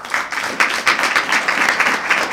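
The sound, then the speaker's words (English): A crowd at the Republican Roundtable in San Francisco applauds Daniel Ellsberg on December 18, 2007, steadily, with dense overlapping hand claps forming a bright, continuous wash of sound at fairly strong volume, with no voices over it. “That was Daniel Ellsberg, with applause from the Republican Roundtable in San Francisco on December 18, 2007.”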